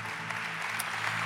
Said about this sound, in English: Can we clap our hands for our pastors? They are the real deal.